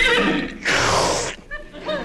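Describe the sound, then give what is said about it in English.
A pony whinnies, a shrill, quavering squeal that swells into a loud, breathy burst and then trails off into a few shorter whinnying calls. “I'm not going to break that pony. He's not a very friendly little fellow, is he?”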